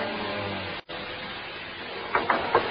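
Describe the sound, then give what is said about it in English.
A steady mechanical rumble and hum of an elevator runs throughout, briefly cutting out once, then a few metallic clunks near the end as the machinery stops and the elevator car arrives at a floor. “He kept grinning at me as I stepped out of the elevator.”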